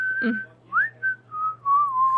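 A person whistles a short, clear melody up close: a few sustained notes with upward slides between them, steady and fairly loud, with no talking.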